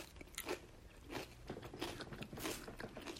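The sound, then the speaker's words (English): Crunching of a blue corn tortilla chip dipped in homemade hummus being bitten and chewed, a series of sharp, crackly bursts repeating roughly every half second, loud with no talking. “We're going to do a blue corn tortilla chip.”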